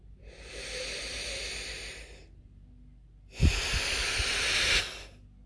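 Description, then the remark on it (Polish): During a guided breathing exercise, a slow, deep breath is drawn in for about two seconds, a short pause, then a longer, louder exhale, both breathy, with no talking. “Jeszcze raz.”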